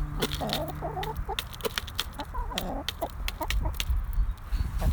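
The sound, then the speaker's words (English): Four hens cluck and murmur while sharp, rapid taps of beaks pecking at food in a small bucket on the ground rattle irregularly throughout, steady and busy with no talking. “What I've done, listener, is I've put the little bucket of foo on the ground, and now all four hens have got their heads in the bucket pecking away, except Carol, who's pecking my Wellington.”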